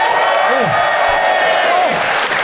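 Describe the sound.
Sustained audience applause, a dense, steady wash of clapping at constant loudness, with a few faint voices and whoops rising through it.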